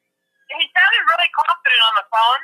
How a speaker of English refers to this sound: Phone.